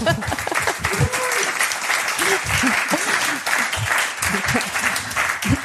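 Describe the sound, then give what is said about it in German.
Steady applause from an audience, a dense, continuous patter of many hands clapping at even loudness, with faint voices murmuring underneath. “Einer unserer Fans wollte gerade klatschen. Nur zu.”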